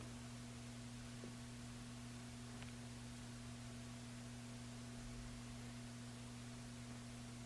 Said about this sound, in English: So I'm really getting used to these white noise machines, kind of liking them now.